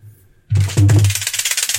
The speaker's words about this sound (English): That didn't sound like a roll at all. It was a rattlesnake.